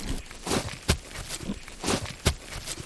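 A boot digs and scuffs into soft peat soil, making repeated crunchy, gritty scrapes broken by two sharper thuds, with no voices.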